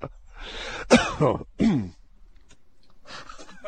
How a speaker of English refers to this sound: Sorry, I had to cough there. I'm not usually funny enough to get you to cough. Yeah, that's sickness. That's not funny.